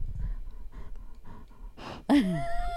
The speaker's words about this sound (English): She's sniffing the mic. You want to hear?